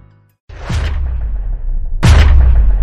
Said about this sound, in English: We are not going to let a thunderstorm stop us.